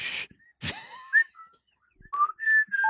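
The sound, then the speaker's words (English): A person whistles the tune Jimmy Crack Corn, a short, bright folk-style melody like an old, not fast bluegrass whistle, in sustained and gliding notes, with a couple of sharp breathy puffs at the start and no talking. “You hear something whistling a tune up ahead.”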